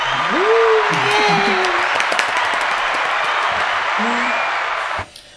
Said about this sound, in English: Round of applause.